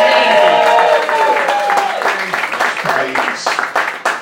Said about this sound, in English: It's worth also saying as well, let's have a round of applause for the person who's been keeping the first part of the show together.